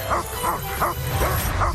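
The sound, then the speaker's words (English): A dog barks repeatedly in quick, evenly spaced yaps, about five sharp barks in under two seconds, loud over a busy background, from a TV spot for Disney's Tomorrowland. “Beware of dog.”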